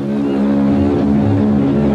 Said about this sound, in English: With a roar of freedom from a mighty voice, the giant liner stirs into life. Roy left home at 13 to be a bellboy on the Bremen, the SS Bremen, a luxurious German ocean liner.